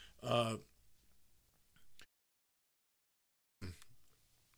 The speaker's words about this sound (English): I had to clear my throat.